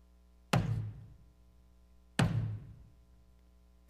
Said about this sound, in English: The pounding of nails. The sound of metal spikes as they cut through human flesh and enter the wood.